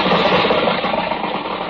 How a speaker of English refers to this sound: Oh, here comes a car. Hey, mister, how about a ride to town?